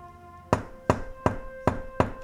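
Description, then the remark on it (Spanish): Five firm knocks on a door in an even, steady rhythm, each a sharp, solid rap, with a faint steady hum underneath and no talking. “tocó a la puerta y se dio cuenta que lo que le había dicho el anciano era cierto.”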